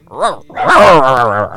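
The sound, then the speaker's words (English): A female dog gives a short yip, then a longer, drawn-out whining bark right after, fairly loud with no talking over it. “Okay, we have the dog now. Yeah. Producer Mom just walked in. And she is barking now.”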